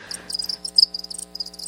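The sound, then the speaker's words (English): A cricket sound-effect sample: crickets chirp in rapid, pulsing bursts, a steady high-pitched trill with a faint low hum underneath and no voices. “Insert cricket sample.”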